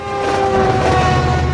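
A passenger train rolls along the rails with a loud, steady rumble and rattle, while a sustained horn-like tone rings through the whole short stretch, with no voices.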